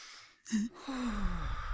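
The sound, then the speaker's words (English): A voice imitates the nervous heavy breathing of a bride: a sharp gasping inhale followed by a long, shaky, voiced exhale, fairly loud, with no words spoken. “I'm like, you're nervous, aren't you? And they're like, yeah, how'd you know? And I'm like, you're doing the breathing thing.”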